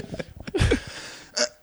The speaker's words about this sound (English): Oh, that was nearly a poo. That was very dangerous. Did you have a little fart? I did. Poop means fart in my world.